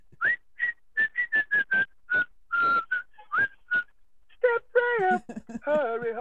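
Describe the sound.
Someone whistles a tuneful melody from a song, a string of clear, short notes in a steady rhythm, before a voice takes over for the last couple of seconds.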